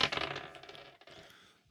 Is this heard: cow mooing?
no